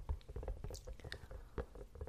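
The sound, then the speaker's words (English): Soft, rapid tapping on a wobbly silicone object, with irregular dull pats that sound slightly squishy, like scattered raindrops. “Quite soothing, interesting, wobbly silicone sound.”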